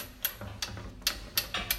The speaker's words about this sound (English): I am very surprised to see this beautiful clock, which I think has been ticking for 300 years. I can't believe it. John Harrison's clock. It's got a very pretty but quite conventional brass face with the name John Harrison engraved on it.